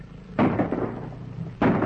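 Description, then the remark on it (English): Two loud gunshots about a second apart, fired at a leopard charging out of the forest, each a sharp crack that trails off into a rumbling decay. No voices are heard. “By Jove, I say, you poured half the Bally magazine in, didn't you?”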